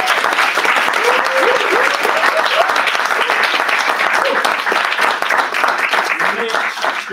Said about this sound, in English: Just let's give a round of applause for our audience as well.